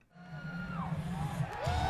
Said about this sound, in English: It's his own theme song that he performed with his band, and now the crowds in attendance at these shows, they'll fade out the music, and the crowd just keeps singing.